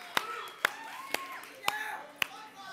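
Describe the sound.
Five sharp, scattered claps ring out at uneven intervals while several voices whoop and call out underneath, giving a small, lively burst of applause and cheering to appreciate volunteer leaders.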